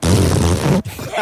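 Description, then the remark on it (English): A child blows a loud, buzzy raspberry imitating the sound of a ghost fart, a low rumbling sputter lasting about a second, followed by a short breathy trailing sound. “What sound does a ghost fart sound like?”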